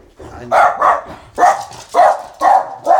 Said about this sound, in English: Somebody at the door and the dog's doing the job that we pay him the big bonios for. Absolutely. So, very, very, very protective.